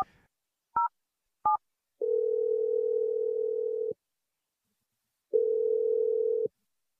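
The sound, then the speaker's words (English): Two short dual-tone keypad beeps as a phone number is dialed to a cell phone, then a steady electronic ringback tone sounding twice in long bursts with a pause between, clear with no voices. “We're dialing a phone number and seeing what she has to say.”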